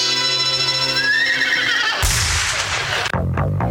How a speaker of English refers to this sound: The staccato hoofbeats of a golden palomino, carrying a man who fights wherever justice needs a champion.